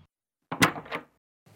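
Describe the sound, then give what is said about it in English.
A door opens with a short burst of creak and rattle lasting about half a second, clear, followed by quiet. “And when you open that door, what he sees will be Farnsworth.”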